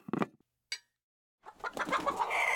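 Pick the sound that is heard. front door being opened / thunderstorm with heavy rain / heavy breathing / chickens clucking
chickens clucking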